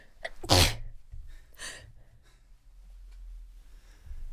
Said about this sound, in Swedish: Om ni undrar vad det var som lät, så var det tre stycken nysningar, tror jag. Jag tror jag nyste ut all sån här rök från scenen.